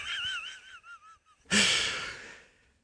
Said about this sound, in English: Sorry about that, guys. I had a pretty bad cough there.